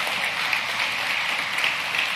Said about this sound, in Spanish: ¿Y qué tal si le damos un aplauso a Jesús por eso?